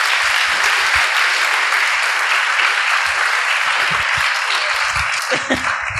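An audience at an evening civil debate event applauds steadily for several seconds, a dense, sustained wash of many hands clapping with no one speaking.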